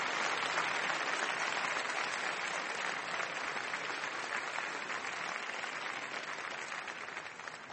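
A debate audience applauds steadily, a dense, even wash of many hands clapping at a fairly loud level that holds for several seconds and eases off slightly toward the end, with no one talking.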